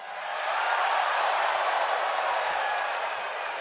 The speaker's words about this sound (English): The whole crowd just went, ooh.